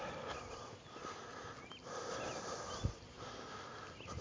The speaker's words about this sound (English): Hey, you guys hear those birds?